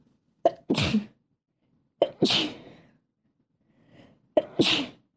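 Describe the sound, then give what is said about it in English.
Three sneezes in a row, each a quick sharp intake followed by a loud explosive burst, spaced about two seconds apart, clear with no talking. “Leave that in there and let everybody know that our family has a tradition of sneezing 3 times.”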